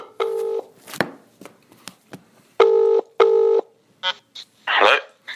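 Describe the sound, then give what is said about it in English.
Clear telephone dialing tones placing a phone call: three sustained beeps in an uneven sequence, separated by soft clicks and handling noises, ending with a few shorter tones and a brief rustle. “And then we called him back that following day. So here's that phone call.”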